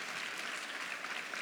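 An audience applauds in a steady, dense wash of overlapping claps, sustained evenly throughout without pause or voices rising above it.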